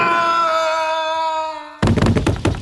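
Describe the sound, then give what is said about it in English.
A steady ringing tone holds, then breaks off into a sudden loud clatter of thuds as a man drops through a trap door in his office into a sub-basement and lands heavily, with no voices. “You put a trap door in my office?”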